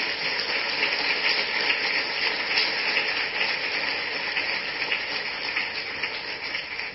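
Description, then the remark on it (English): An audience applauds steadily for several seconds for Minister Deanhan, a dense, even wash of clapping that holds at a fairly constant level without voices over it. “And I think we should give a big round of applause to Minister Deanhan for his time.”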